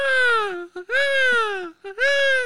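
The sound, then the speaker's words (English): A peacock's mating call played from a recording on a cell phone to lure a loose peacock into a fenced yard to await Boston Animal Control: three loud, piercing wails in a row, each sliding down in pitch, separated by brief gaps with short honking notes between them. “relied on his quick wit to track down a peacock mating call on his cell phone, successfully luring the bird to a fence yard where he waited patiently for the arrival of the Boston Animal Control.”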